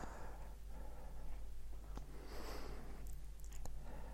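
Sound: pet sniffing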